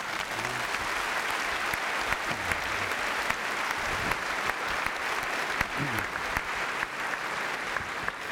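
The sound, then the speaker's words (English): Steady, dense applause from a large audience, sustained at an even level throughout with sharp individual claps scattered over the broad wash of noise. “There's a lot more to talk about, but you're going to start clapping in about 9 seconds, so I'm going to go back to the podium.”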